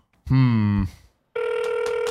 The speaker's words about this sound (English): She just doesn't answer. She doesn't answer her fucking phone. She doesn't have reception in her house.